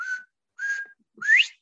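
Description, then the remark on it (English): A bobwhite quail's whistled call: two short, level notes followed by a louder, sharply rising final whistle, clear and alone with no voices. “And she said, "Do you hear that bird? It calls its name, Bob White."”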